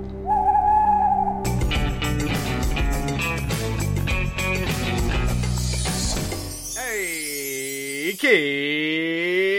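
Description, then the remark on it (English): The Great Big Owl network ident: a busy, jangly musical sting plays for several seconds, then gives way to two long, loud owl hoots, clear, each swelling and falling in pitch. “The following podcast is a member of the Great Big Owl family.”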